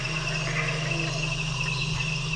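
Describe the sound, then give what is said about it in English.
A loud, unbroken chorus of jungle insects at night, layered steady trills and buzzing tones at several pitches blending into a dense, almost hiss-like wall of sound with no voices. “And then they would be kind of harmonics of different tones that came with other insects or the same ones.”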